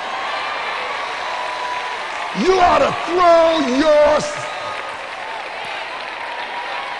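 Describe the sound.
A church audience claps and shouts during a sermon in a steady wash of crowd noise, with a man's voice preaching over it for a couple of seconds in the middle.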